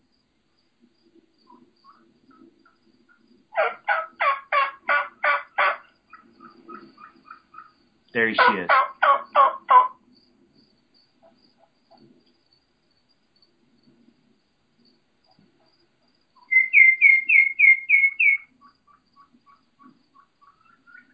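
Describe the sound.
A turkey hen's rapid, high-pitched kiki calls, a quick run of sharp, flute-like notes, following earlier bursts of similar fast-paced calling, with a brief spoken remark.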